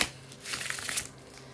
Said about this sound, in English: Let me give the tarot card the tarot deck just a few more shuffles.